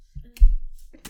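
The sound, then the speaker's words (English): Someone sneezes once: a short voiced lead-in bursts into a loud, sharp, breathy blast that quickly fades, followed moments later by a brief breathy noise. “Bless you.”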